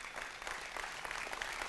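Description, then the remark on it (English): A large church audience applauds steadily as a hand clap of praise, a dense wash of many hands clapping at once, sustained and fairly loud throughout without any voices standing out. “Give yourself a hand clap of praise this morning.”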